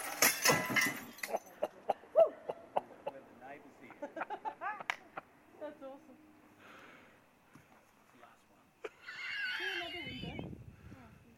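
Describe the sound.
Glass smashes loudly at the start, followed by a run of sharp tinkling clinks as pieces scatter and settle, then a brief burst of voices and noise near the end.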